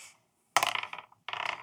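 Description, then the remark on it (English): Dice clatter across a hard tabletop in two quick bursts, a rattling tumble followed by a second shorter roll, fairly loud with no voices. “He rolled.”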